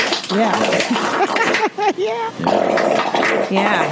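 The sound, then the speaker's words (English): A voice imitates a fart with wavering, buzzy sounds that swoop up and down in pitch, loud, running continuously for a few seconds. “I wish you farted like that in front of him.”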